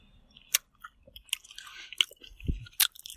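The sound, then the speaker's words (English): Wet chewing of a soft, chewy, artificial peach-flavored fruit candy recorded on a phone, with irregular sticky smacks and squelches over about three seconds, no talking. “And let's see what it sounds like to eat them.”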